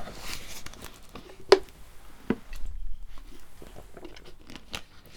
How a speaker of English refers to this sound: I'll have some water.